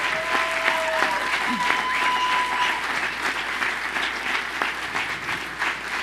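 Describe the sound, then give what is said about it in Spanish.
An audience applauds the church cleaning team steadily for several seconds, a dense, even patter of many hands clapping, with a few brief tonal sounds and faint voices mixed into the crowd noise. “Oye, otros aplausos, sinceramente, porque...”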